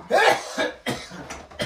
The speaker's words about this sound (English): Excuse the cough. That's a dry cough too.